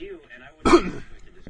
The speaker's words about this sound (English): Oh, I am coughing like crazy.